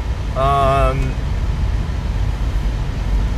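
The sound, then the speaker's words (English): A steady low rumble of road and engine noise inside a moving car, on the way to get a passport photo taken, fills the whole stretch, with a short burst of voice rising briefly near the start. “I'm in the car right now, and I'm going to get my passport photo taken.”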